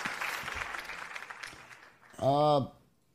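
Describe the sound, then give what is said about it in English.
Hand clapping applause, a steady crackling patter for about two seconds, followed by a short, loud whooping vocal cheer that rises and falls in pitch. “I've never had Spam, but I'm giving you an applause anyway, because I know what it is.”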